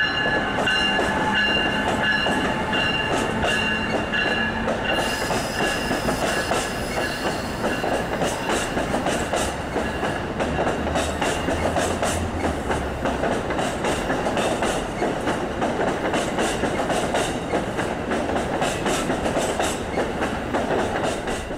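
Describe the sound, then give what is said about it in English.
An Amtrak passenger train rolls steadily along the rails after leaving the station, a continuous loud rumble with rhythmic clicking of wheels over joints and a few high tonal whines, no voices. “after we have left the station, Center City can be seen on the right.”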